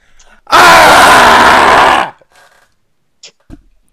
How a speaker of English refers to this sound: There's that yell. I was waiting for that.